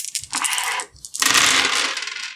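Dice are rolled for a physique roll in a game, clattering and rattling in two bright, busy bursts separated by a short pause, the second burst longer and fuller, with no voices; the roll comes up five 2s.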